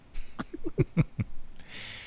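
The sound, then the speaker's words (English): A voice imitates the small, throaty 'sugar coughs' from eating very sweet plain nougat: about six quick, clipped bursts in an uneven rhythm, ending in a breathy, hissing exhale. No words are spoken. “And then you get those weird little sugar coughs because it's so sweet.”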